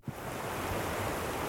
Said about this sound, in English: The horizon of a long, low-speed waterfall curls out of sight